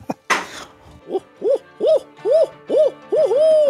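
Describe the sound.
A man imitates an owl with his voice while standing up, giving a quick run of about half a dozen rising-and-falling hoots in a steady rhythm, fairly loud, after a short noisy burst at the start.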